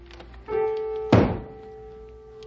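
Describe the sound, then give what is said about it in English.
A single loud, hollow thump as an old broom is banged on the ceiling, cutting through a steady, sustained musical tone that drones on in the background. “Where's that old broom of mine? Maybe if I bang on the ceiling, he'll take the hint and go play ball or something.”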